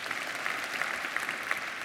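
An audience breaks into steady applause, a dense wash of many hands clapping at a fairly even level throughout, with no voices standing out over it.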